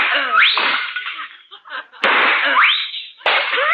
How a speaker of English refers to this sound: Oh, you shot those two china pheasants. Good hunting, old boy. Good hunting.